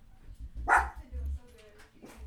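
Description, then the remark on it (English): A female dog lets out a loud bark, followed by quieter rumbling and a softer second bark near the end, with some faint voices in the background. “Yeah, she didn't bark at her yesterday, which is crazy.”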